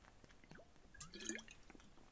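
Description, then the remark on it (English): Water drips at an uneven pace somewhere off in the distance in a pitch-black space, each drop a small bright plink that sometimes rings or trickles briefly. It is faint against a quiet background. “I can hear water dripping in the distance.”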